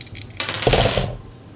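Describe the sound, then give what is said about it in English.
Dice clatter and tumble across a hard surface in a quick, fairly loud rattling burst lasting about a second as players roll dice in a game, then settle into quiet. No one speaks. “Everybody roll some dice and narrate how you either do not succeed and lose some resolve somehow, or how you succeed.”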